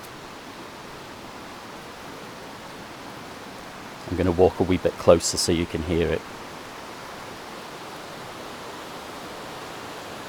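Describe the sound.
A river flows in a valley below a ruined Knights Templar church, bordered by yew trees, with a steady, even rushing wash that fills the whole recording, moderately close. Partway through, a man speaks briefly over the water, which continues unchanged.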